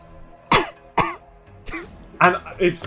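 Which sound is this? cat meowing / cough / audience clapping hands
cough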